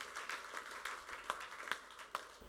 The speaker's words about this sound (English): Shout hallelujah. Hey, clap your hands unto the Lord.